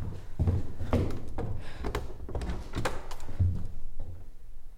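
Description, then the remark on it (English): A heavy hidden door behind a bookcase grinds open, with a series of low thuds and scraping knocks spaced unevenly over a few seconds, fairly loud, no voices. “Jesus, there's a hidden door.”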